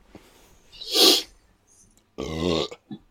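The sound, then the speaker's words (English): A sharp breathy burst, then a long, loud, throaty belch, rumbling for about half a second before a brief trailing grunt. “you've missed out on a spectacular fart from me and an almighty belch”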